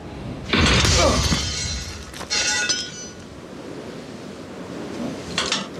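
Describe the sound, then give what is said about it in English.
A shifter spanner slips from a bag beside a torque wrench, falls past two workers under a lift and crashes loudly onto a metal toolbox, followed by a second clattering impact and rattling, then a fainter clink near the end, all without speech. “a spanner, a shifter that's in the bag next to the torque wrench, slips and falls, narrowly misses the two guys who are working underneath the lift, which they shouldn't be doing, but they got a little bit complacent, and smashes a toolbox.”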